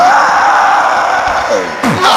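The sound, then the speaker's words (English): An audience claps and shouts together in a loud, dense wall of cheering, with yells and whoops rising above the crowd noise throughout. “Those who are clapping and shouting, God has remembered”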